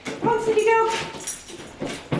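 A 5-year-old black Labrador whimpers while being tested in a study of the psychology of dogs: a thin, high-pitched whine held for about half a second, followed by a few softer, breathy whimpers and snuffles.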